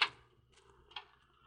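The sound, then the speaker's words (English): A hospital children's ward door is opened: a sharp latch click, then a second softer click and clunk about a second later, with quiet in between and no voices. “You open that door, Mr.”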